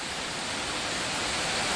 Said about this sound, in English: But when it rains, oh boy, does it rain. Whilst it's pouring outside